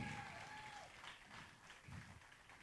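A crowd applauds in a steady wash of clapping that holds throughout, with a few faint whistles or cheers and some low murmuring voices underneath.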